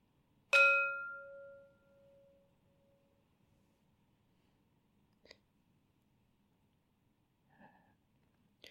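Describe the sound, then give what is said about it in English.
A meditation gong is struck once to close a meditation session, giving a bright metallic hit that rings on in a steady, humming tone and fades away over a few seconds. Faint clicks and rustles follow in the quiet. “After the 3rd gong, please come out of meditation gently.”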